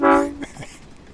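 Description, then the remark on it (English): A single short, loud train horn blast, lasting under half a second, then fading into quieter background noise with faint voices. “You're on the love train. Choo-choo.”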